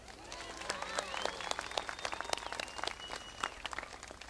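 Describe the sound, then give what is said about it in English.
An audience applauds coloring contest winners at a Festival of Lights event with dense, steady clapping that carries on for several seconds, its crisp claps overlapping at a moderate level, with a few voices calling out near the start. “Let's give our coloring contest winners a big round of applause.”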